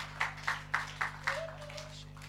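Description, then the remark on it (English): A short burst of church audience clapping at Impact Church in Oldham, welcoming the morning's speakers: five sharp, evenly spaced claps in a steady rhythm that then trails off, with a low steady hum and a faint tone underneath. “So can we just give them a round of applause as they come to bring the word this morning to us?”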